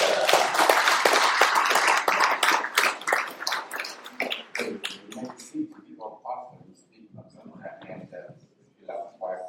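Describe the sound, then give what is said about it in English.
A crowd breaks into brisk, dense clapping for a pastor that thins to scattered claps after a few seconds, with murmuring voices coming through as the applause fades. “Give him a hand clap.”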